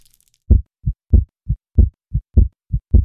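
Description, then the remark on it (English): A heartbeat thumps alone in a steady, deep lub-dub rhythm, loud low thuds alternating with slightly softer ones, after a brief moment of near silence; the heart is beating in a mason jar in a clock tower. “In the clock tower, a beating heart in a mason jar is added to two others already on the table.”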